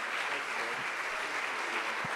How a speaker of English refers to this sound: And if we could stand and just greet him with a hand clap today. Amen. Amen.